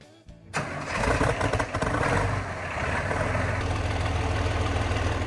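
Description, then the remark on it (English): After a moment of silence, an Allis-Chalmers 7050 tractor engine in Southwest Michigan cranks and catches, roaring up loudly before settling into a steady, deep, rumbling idle, with no one talking. “This week we're off to Southwest Michigan and we're going to check out an Alice Chalmers 7050.”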